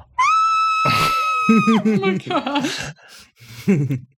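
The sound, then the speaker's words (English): A voice imitates a muffled, strained scream made while biting and screaming into one's own wrist: a high, sustained cry of about a second and a half, followed by a few choppy, stifled vocal bursts, fairly loud. “is biting her own wrist right now and screaming into it like this.”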